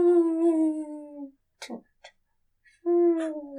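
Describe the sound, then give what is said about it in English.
A dying elephant in a video game, crushed by a tree a lumberjack felled, groans in long, mournful, droning moans that sag in pitch, two drawn-out cries broken by a few short rough snorts, loud with no talking. “Oh, he's so close to forming a word. Oh, he's dead. I don't think elephants can speak English.”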